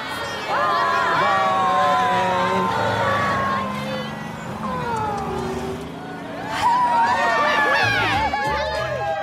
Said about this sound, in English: But the cheer that all the parents let out once the kids' bus drove away.